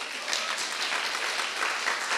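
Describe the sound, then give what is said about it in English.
An audience applauds steadily, a dense, even wash of many hands clapping at once with no voices standing out, holding a fairly constant loudness throughout. “Let's give them a clap.”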